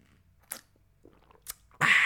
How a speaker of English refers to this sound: Sip of coffee. Coffee break, boss. Don't mind me, boss.